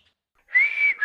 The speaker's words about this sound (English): When I have my plastic teeth in, I literally can't whistle. I was like, la la la, listening to the radio, and then I was like, this doesn't even work.